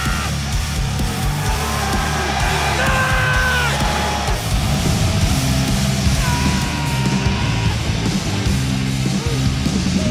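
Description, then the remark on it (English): A loud arena crowd at an NXT wrestling event chants a rhythmic barking cheer, many voices yelling and whooping together in steady repeated bursts that fill the whole clip. “Then you hear the barks.”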